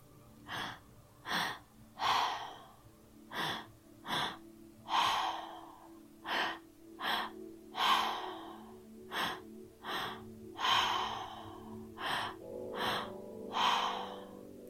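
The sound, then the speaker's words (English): Rapid, forceful breaths in a steady rhythm, sharp inhales alternating with fuller, breathy exhales, clear with no talking, during an active breathwork exercise lasting five minutes in total. “And now that completes a total of 5 minutes of active breathing.”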